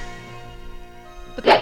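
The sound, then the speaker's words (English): A steady, faint tonal hum gives way to a single loud, sharp whip crack sound effect at the very end, bursting out suddenly and cutting off quickly. “Oh, can I have my whip, please?”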